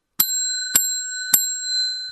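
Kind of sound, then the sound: signal or alarm, bicycle bell ringing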